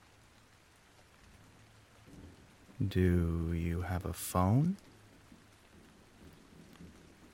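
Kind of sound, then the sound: nature, rain falling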